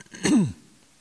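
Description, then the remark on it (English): A speaker coughs while reading Bible verses aloud: one short, rough cough, a harsh burst that drops into a brief voiced, falling rasp, then quiet. No one speaks. “Is this going to be some kind of tea that's going to make me cough harder?”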